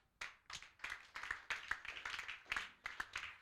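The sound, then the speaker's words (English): A church audience claps their hands as they pray, an irregular, continuous patter of sharp slaps, moderately loud, with no voices standing out over the clapping. “Clap those hands well and pray.”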